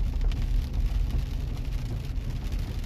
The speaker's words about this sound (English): It's still raining.